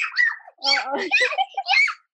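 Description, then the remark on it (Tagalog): A 4-year-old child's high, bubbly vocalizing, a short run of babbling mixed with little giggles, lively and playful across a couple of seconds. “Ano pala yung baby ko? Ayan, yung makulit ko na 4-year-old.”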